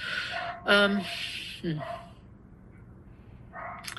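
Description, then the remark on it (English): A female dog barks outside, having just started, two loud, sharp, high-pitched barks close together, then a quieter yip after a pause, with no one talking. “She's going to be out there barking for another minute or two because they just got started.”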